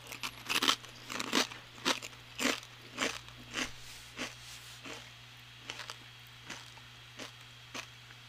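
Repeated crunching of someone biting and chewing a crisp chip, with sharp crackly bursts roughly every half second and a steady low hum underneath, no talking.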